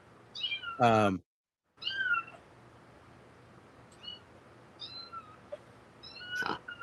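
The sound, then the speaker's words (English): A loud, drawn-out cat meow near the start, followed after a brief silent gap by several softer, shorter meows scattered over a faint background hum. “Meow.”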